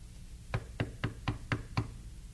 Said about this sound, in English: So knock at the door.